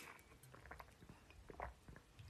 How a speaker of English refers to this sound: You can hear me taking gulps of my water here.